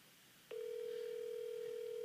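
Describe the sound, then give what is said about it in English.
After a brief quiet moment, a steady, unbroken dial tone of an outgoing telephone call switches on and hums at constant volume, clear, continuing to the end with no voices. “I have to call a resident New Jersey person. I'm fucking dead. Yeah, watch him not answer the phone either.”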